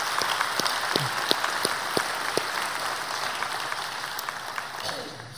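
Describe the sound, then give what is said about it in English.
An audience at a Christmas church service claps steadily for several seconds for the readers and the band. A dense wash of many hands, with a few sharper individual claps popping out, begins to thin toward the end. “Can we give a round of applause for our readers and for the band who've done a great job?”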